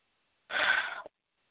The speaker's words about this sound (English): Sorry, I had to cough. Because once I start speaking with the message, they'll like clear that out so people can hear me.